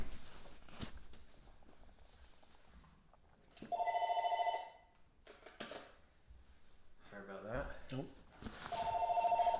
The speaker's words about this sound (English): I'm going to shut that phone off.